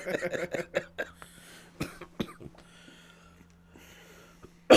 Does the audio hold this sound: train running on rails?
no